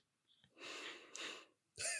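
A long, loud breath, airy and rushing for about a second, followed by a short pause and the start of another breathy, voiced sound.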